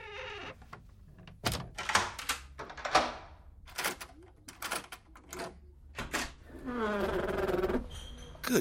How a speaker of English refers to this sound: Who bangs on a door these days?